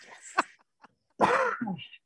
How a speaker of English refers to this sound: Bless you. Sorry, guys.